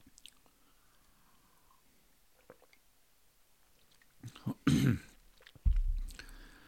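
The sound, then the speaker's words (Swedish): Someone drinking water: after a quiet stretch of faint rustling, a few wet sips and swallowing gulps come in two short bursts near the end, moderately loud and with no talking. “Ska bara dricka lite vatten.”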